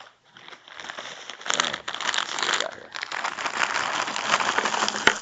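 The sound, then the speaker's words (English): Continuous crinkling and rustling of plastic candy bar wrappers being pulled out in a handful, with sharp crackles and a few louder snaps, no talking. “I'm going to get a bunch out because I'm going to use these up so I can buy new candy bars next week.”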